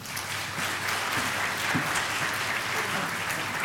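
A crowd applauds steadily, a dense wash of many hands clapping at an even, fairly loud level throughout, with faint murmurs of voices mixed underneath.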